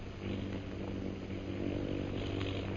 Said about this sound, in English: Do you hear those planes, Bhutan?